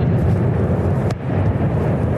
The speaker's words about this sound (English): We've been listening over the last 15, 20 minutes. Huge rounds of what sound like fireworks going off.